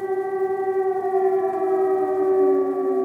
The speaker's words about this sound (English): A handful of aid workers hunker down as the air raid siren sounds